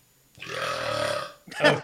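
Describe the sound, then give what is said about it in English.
A long, drawn-out burp rumbles for about a second, fairly loud, followed by a brief burst of breathy laughter or exhale. “Hold on. Burp.”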